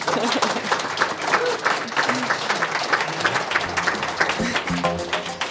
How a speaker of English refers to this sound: Let's give these three a great round of applause.